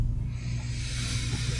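An air conditioner starts up on a warm night: a steady low hum underneath, with a broad airy hiss that swells and brightens over a second or so, then holds. No one is speaking.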